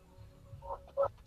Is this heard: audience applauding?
no